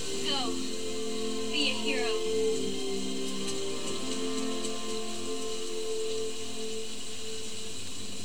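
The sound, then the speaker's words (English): Steady rain hisses throughout at a fairly even level, with a few faint tonal sounds and murmurs layered underneath. “See, with my luck, I'd, like, slip in the rain.”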